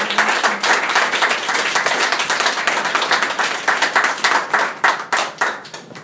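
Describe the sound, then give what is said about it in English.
An audience at a poetry reading applauds to welcome the next poet, with dense, steady clapping that runs loud and unbroken for about six seconds, with individual claps crackling through the wash and no voices over it. “Our next poet up tonight is a very fine poet. Give it up for”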